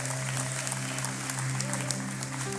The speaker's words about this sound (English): Come on, give God a good hand clap this morning, church.